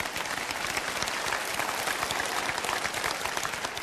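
A large audience claps steadily for several seconds, a dense wash of overlapping hand claps with no voices standing out.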